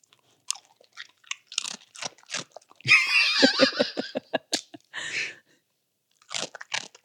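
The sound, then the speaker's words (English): A dog crunches a fortune cookie into a microphone: loud, crisp crunches and rapid chewing bursts, with brief giggling from people near the end. “are you ready for Lily Dollar's crunching in a microphone?”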